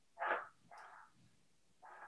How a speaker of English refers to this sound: What are those dogs? Can you hear these damn dogs?